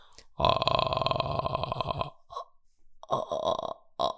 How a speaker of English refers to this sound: you will learn a vocal fry, and you can naturally do it. Everyone can do it. It's this. Can you do a vocal fry? Oh, you mean when you can turn it slow down to single ticks?